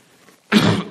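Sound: cough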